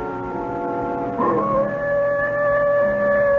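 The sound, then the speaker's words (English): A wolf howls in long, sustained, wavering tones that slide up in pitch partway through and hold steady, fairly loud and continuous with no talking. “That wolf again.”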